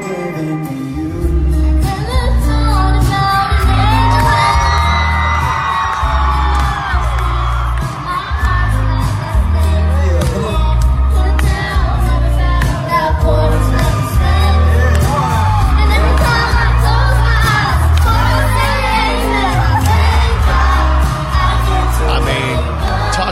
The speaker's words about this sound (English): And the crowd goes crazy because she's absolutely adorable.